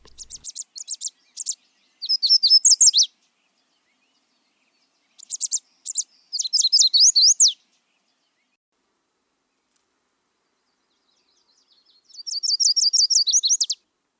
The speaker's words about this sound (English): Our first bird today is the little tiny summer warbler. It's an all-yellow bird, and if you can see it, it has orangish or reddish stripes down the side. And his song is very easy to remember. Sweet, sweet, summer sweet.